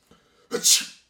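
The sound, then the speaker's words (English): A single sharp, fairly loud sneeze, with a short voiced intake leading into a hissy, explosive burst that fades quickly. No talking around it. “You wouldn't want to sneeze, right?”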